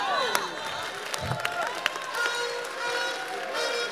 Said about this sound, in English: Oh, those who are clapping, God is giving them something.